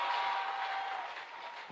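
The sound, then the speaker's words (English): A dense wash of clapping from a crowd at a Christian worship gathering, steady and fairly loud, many hands blending into a continuous noisy roar that tapers only slightly toward the end, with no voices standing out. “Are you clapping?”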